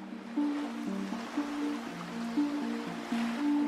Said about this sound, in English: Slipping over the Straits of Messina from Reggio on the Italian mainland. Rolling waves of the Mediterranean lapping gently around them.